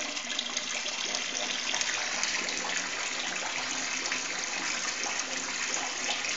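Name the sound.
water running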